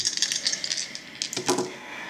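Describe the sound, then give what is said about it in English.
Six-sided dice (d6) clatter across a tabletop in a quick run of sharp clicks, then a second louder burst of tumbling as they settle. No one speaks. “It's 8d6 plus 6. I need another d6, yeah.”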